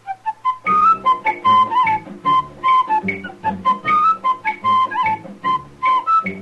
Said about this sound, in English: That whistling man